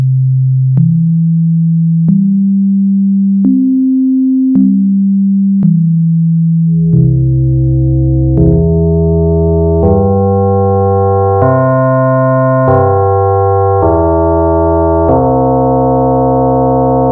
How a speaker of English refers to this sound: But I'm just going to play just the first one, the main carrier sine wave, and then I'm going to bring in some frequency modulation slowly, which is based on the other sine wave that's tuned actually down a fifth.